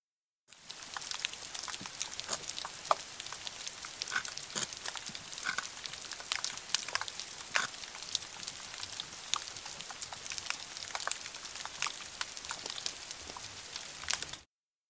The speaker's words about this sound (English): This was an underwater recording of scratching spiny lobsters and crackling snapping shrimp in the Mesoamerican reef.